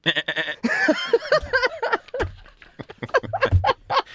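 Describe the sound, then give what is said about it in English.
Pygmy goats bleat over and over in quick succession, loud, their wavering, nasal cries overlapping into a busy chorus with no talking. “Have you put a bulk order in for pygmy goats?”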